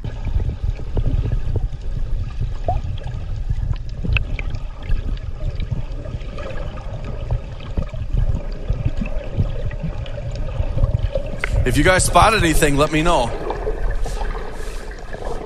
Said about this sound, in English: And so this is an exciting opportunity for us to be able to show you what it's like to snorkel here at the Red Sea.